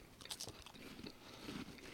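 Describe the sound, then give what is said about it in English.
Close, wet chewing and crunching right against the microphone while eating a Kentucky Bar Fight with blackberry, blueberry, jalapenos and bourbon, with irregular bites and mouth sounds filling two seconds, no talking. “Get out of the goddamn microphones when you're chewing.”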